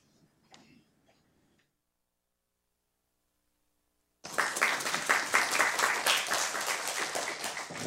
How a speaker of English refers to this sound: thank you, audience, for that belated applause.